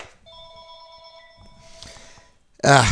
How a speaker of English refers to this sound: my phone's ringing. I gotta pick it up. Let's just see who this is.